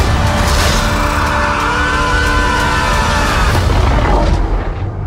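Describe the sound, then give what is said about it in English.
A spaceship hyperlaunch blast-off effect: a loud, steady roar with deep rumble and whooshing noise, overlaid by whining tones that sweep and bend, sustained for about five seconds before thinning slightly at the end. “You are clear for hyperlaunch.”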